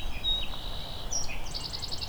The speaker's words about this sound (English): Just heard a swamp sparrow.